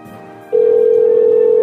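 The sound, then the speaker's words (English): A telephone ringing tone on the line: a steady, loud electronic hum switches on after a brief quiet moment and holds without a break to the end. “It's ringing there.”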